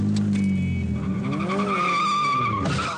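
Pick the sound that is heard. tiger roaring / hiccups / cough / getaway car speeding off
getaway car speeding off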